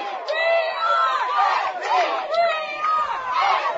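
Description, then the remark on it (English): A raucous crowd at a Flyers football game at night roars continuously, many voices shouting and cheering together in a loud, sustained wall of sound with rising and falling swells. “This crowd is raucous here tonight, too, folks. You can hear them below us here.”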